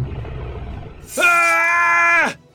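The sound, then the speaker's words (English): A monster with a scaly, human-like body and a huge gaping mouth lets out a loud, sustained roar with a harsh, screeching edge, bursting in after a quiet moment, holding steady for about a second, then dropping off abruptly. “A huge, gaping mouth revealed yellowing teeth that were stained with blood. It opened even wider to let out a thunderous roar.”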